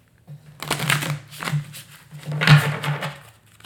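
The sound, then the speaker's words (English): A deck of animal guide cards is shuffled, several quick riffling bursts of papery flutter and snapping, the last burst loudest, with a steady low hum underneath. “Right, just shuffle it up.”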